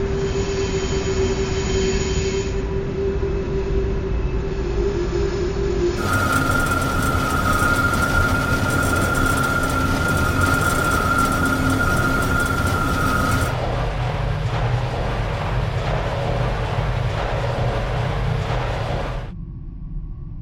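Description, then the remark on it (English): A train rumbles steadily along the rails with a loud, continuous roar, its character shifting every several seconds, and sustained metallic tones that sound like squealing wheels ring over the noise. “And, I mean, the good thing about it was I got to record some trains.”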